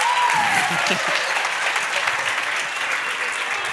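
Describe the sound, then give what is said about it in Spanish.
Steady applause from an audience fills the scene, a dense crackle of many hands clapping at an even level throughout, with a brief voice or whistle-like tone near the start. “Tú haces cualquier cosa y a ti te aplauden.”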